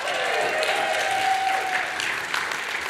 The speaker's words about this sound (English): yeah, give them a cheer, guys.